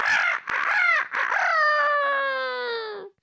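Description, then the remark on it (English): A rooster crows once, loud and alone: a few harsh, broken opening notes give way to a long, drawn-out call that slowly falls in pitch before cutting off after about three seconds. “The rooster crowed.”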